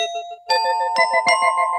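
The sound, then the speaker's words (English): A ding-dong chime rings out in several bright, ringing strikes, each tone overlapping the last as they sustain and decay. It is clear and fairly loud, with no talking. “Do that bell again for me.”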